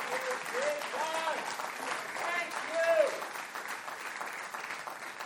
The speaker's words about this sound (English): Can you just one time for the Holy Ghost, just give the Lord a thank you clap just to say thank you for picking me.